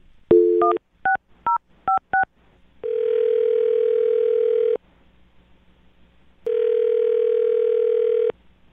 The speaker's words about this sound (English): Well, I'm going to dial his phone number right now and find out why he's not calling you back. Here we go.